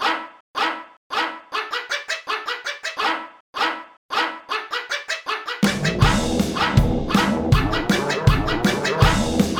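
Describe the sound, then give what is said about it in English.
A dog barks in quick, rhythmic bursts, loud, alone for the first half. Then a full band with guitars kicks in underneath while the barking continues. “Number three, this was the dog one.”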